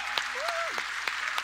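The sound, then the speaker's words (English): A crowd applauds to celebrate all the ladies and mama bears, with dense, steady clapping throughout, punctuated by a few sharper claps, while a single high cheer or whoop briefly rises above it. “So give a huge round of applause to all the ladies.”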